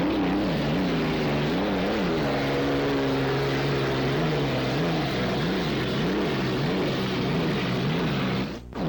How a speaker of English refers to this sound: Here's Smirnoff. This is a real loud sounding entrance in this boat. When she goes by, boy, you really close your ears. Here it is, Smirnoff.